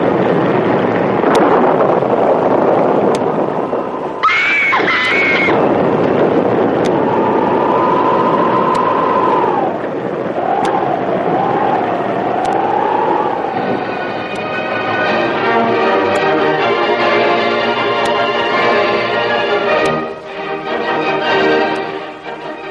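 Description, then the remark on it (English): Storm waves crash over a storm-lashed ship's deck at sea, a huge wave breaking over it, in a steady, loud roar of surging water and gusting wind, with high whistling howls partway through and a droning, horn-like tone rising later. “a huge wave broke over the deck and swept them into the raging seas.”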